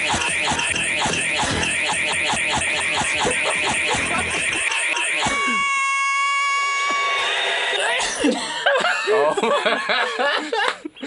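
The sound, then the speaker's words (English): A person's sneeze sounds chopped up and sequenced into a loud rock-style cover of the theme song of the TV show Rage: rapid rhythmic bursts, then a sustained pitched, tonal stretch, then more choppy bursts before it cuts off. “And this is what my sneeze actually sounds like.”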